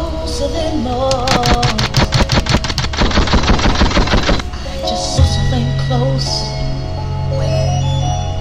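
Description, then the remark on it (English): Hip-hop beat with fast, stuttering drum hits over deep sustained bass and a looping synth melody. The rapid drum roll drops out halfway, leaving bass and melody. No voices. “It's crazy, I never heard this beat before.”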